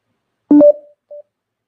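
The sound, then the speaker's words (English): Two short electronic phone beeps as someone checks that their phone is on mute, the first a louder two-tone chirp mixed with a soft handling thump, the second a brief clean single tone half a second later, with quiet around them. “Let me make sure my phone is on mute.”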